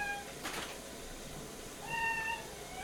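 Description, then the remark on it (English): A young dog lets out two high, thin, drawn-out howls because it is not getting the attention it wants, the second longer and rising, sounding almost like a cat's meow, with no talking around them. “I know that sounds like a cat, but it's not. Yeah, I was like, That's the young dog.”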